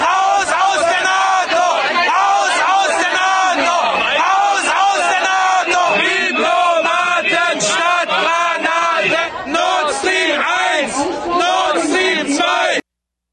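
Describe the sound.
A dense crowd shouts and yells continuously, many overlapping voices bellowing and whooping at full volume for the whole stretch before cutting off abruptly at the end.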